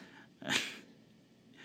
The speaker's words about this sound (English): And there's a dog here, too, if you can't hear him. You probably can. He's a heavy breather.